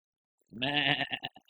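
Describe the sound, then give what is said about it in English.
A goat bleats once, loud: a long, wavering cry that breaks into a few stuttering pulses as it trails off. No one speaks. “I've got a goat here.”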